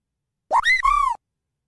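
A chocobo cry from the Final Fantasy video games: a short, bright two-part squawk that swoops upward, then warbles into a wavering descending note, heard alone with no talking.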